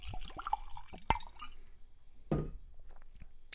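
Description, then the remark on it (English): A $15 Heaven Hill bourbon from a screw-top bottle pours into a glass, a few quick glugs and drips with a brief splashing burst near the end. No one speaks. “All right, let's pour it down.”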